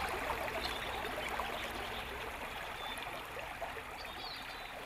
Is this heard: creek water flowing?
yes